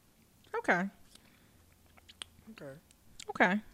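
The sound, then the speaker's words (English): Quiet sips of rosé wine with small wet mouth clicks, broken up by a few short murmured hums of appreciation. “So let's get into the sipping.”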